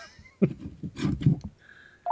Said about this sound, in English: And the phone rings.